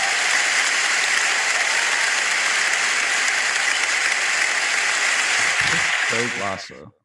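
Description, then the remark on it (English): Loud, sustained clapping from a crowd, a dense wash of hand claps that holds steady for several seconds, then thins out as a voice begins talking and the applause fades away. “Oh, the clapping.”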